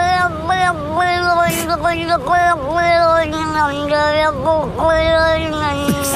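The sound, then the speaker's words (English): A cat yowls loudly in long, wavering meows whose pitch rises and dips like talking, running almost continuously for about six seconds with a few brief breaks. “And then and my favorite was the cat that says, "I am Fat Billy, the Peter Pan Billy, and I'm gonna pop wheelies."”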